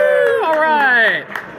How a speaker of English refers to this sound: So, and the last but not least, we have the all-important Car Wars trophy. That's right. Everyone clap so we get some sound effects here. Yeah, woo!